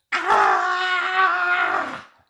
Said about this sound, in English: frustration crescendoed into a primal scream.